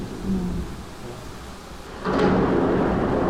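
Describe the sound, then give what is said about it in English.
Thunder rumbles low and steady through a storm, then swells louder around the midpoint as a fresh crack rolls in, with rain hissing beneath it. No one speaks. “This lightning is so, and the thunder.”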